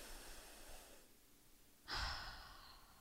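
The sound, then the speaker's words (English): A slow, deep calming breath drawn in, a brief pause, then a long audible exhale that starts strong and gradually fades, with no talking. “Let's do it together.”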